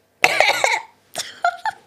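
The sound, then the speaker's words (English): A loud cough burst right at the microphone from a person with a throat tickle that won't go away, followed after a short pause by a few smaller, raspy coughs in quick succession. No one speaks. “can you fucking not cough into the mic?”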